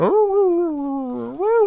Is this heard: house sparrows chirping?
no